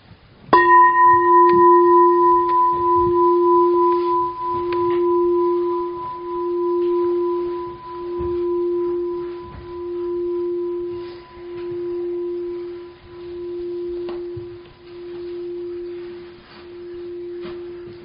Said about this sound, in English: And so we'll start and end with the bell.